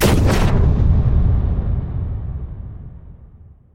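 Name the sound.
explosion sound effect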